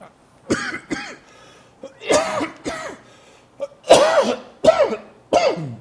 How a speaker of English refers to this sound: Good news is I'm not coughing up blood yet. But there's always hope for tomorrow.